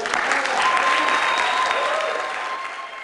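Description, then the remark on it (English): An audience at a speech promoting veganism claps steadily in a dense, continuous wash of applause that stays fairly loud throughout, easing slightly toward the end, with a faint sustained tone running underneath. “Maybe that's why they were clapping.”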